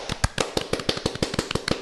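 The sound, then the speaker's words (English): A short burst of applause: quick, sharp handclaps in an uneven, rapid rhythm, fairly loud and crisp, with no voices over them. “Always give a good round of applause.”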